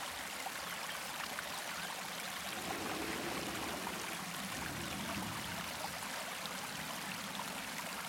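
Steady rushing water of a waterfall pours and splashes continuously, a broad hiss with no pauses and no voices.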